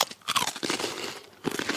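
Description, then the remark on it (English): Crisp crunching of a Muddy Bites snack, the chocolate-filled bottom tip of an ice cream cone, being bitten and chewed, several bright crackly bursts with a short pause before a final crunch, and no talking. “It's the bottom part of an ice cream cone that has like chocolate.”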